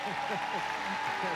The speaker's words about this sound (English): This is the only church that claps and no one came. That's what you call faith. Clap again. They'll start coming.